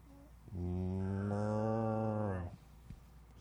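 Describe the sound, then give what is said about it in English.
A person imitates a cow, letting out one long, low, steady moo that lasts about two seconds and rises slightly at the end, fairly loud with no talking around it. “What does a cow say?”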